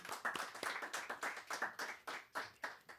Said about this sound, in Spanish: vamos a darle fuertes palmas al Señor y la bienvenida a él también.